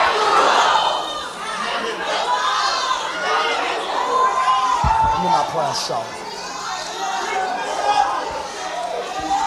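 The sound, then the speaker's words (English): An audience shouting together for God as urged by a preacher, a dense, sustained roar of many overlapping voices with excited cries rising and falling throughout, loud and continuous without pause. “Somebody open up your mouth and shout, break the rules.”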